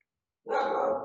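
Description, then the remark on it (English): A dog barks once, loud, a single drawn-out bark that rises suddenly after a moment of silence and holds to the end, with no one talking. “the dog's fine. We know we got a lot of dogs on the show.”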